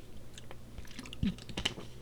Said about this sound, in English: let me just take another swig of water here.